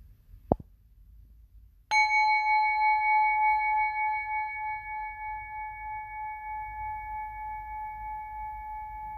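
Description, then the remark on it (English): A small tap, then a single gong strike during a guided breathing exercise, ringing out with a steady, shimmering metallic tone, slowly pulsing as it fades gently over several seconds. No voices. “And when you hear the end of the gong, slowly open your eyes.”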